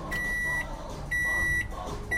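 A microwave oven in a bar beeps three times while heating a pizza for a customer, in a steady rhythm, each high electronic tone lasting about half a second, over a constant low mechanical hum. No one speaks.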